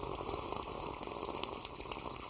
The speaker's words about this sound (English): Go re-up on your situation, Sippers and Sippets, while I pour me up some more of this good, good Congo